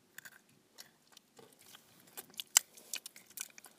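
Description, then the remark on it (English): Crisp crunching of someone chewing pretzels, with irregular sharp bites and crackles scattered over a few seconds, growing busier toward the end, with no talking. “With that crunch. And it gets a bit annoying for other people.”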